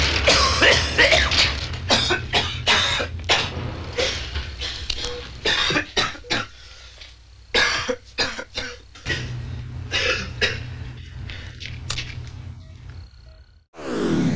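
A long run of harsh, irregular coughs, fairly loud, coming in clusters with brief gaps and some rough throat-clearing, over a low mechanical hum, without any clear speech.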